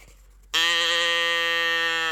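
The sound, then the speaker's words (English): A single loud, sustained mechanical moo from a country cow toy tip-can, turned upside down and back, starting abruptly after a brief quiet moment and droning steadily with a reedy, buzzy tone. “she sent me this country cow, like turn the can upside down, then back, and it'll moo.”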